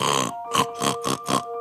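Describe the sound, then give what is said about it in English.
A person imitates a pig with the classic pig snort, starting with a short voiced grunt and following it with four rapid, rhythmic nasal snorts, loud, with no other talking. “And for pig, we can either do the classic snort,”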